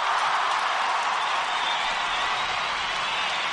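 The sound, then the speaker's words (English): A dense, steady wash of audience applause, many hands clapping at once and sustained at an even loudness for a few seconds before cutting off abruptly. “Give her a round of applause for that”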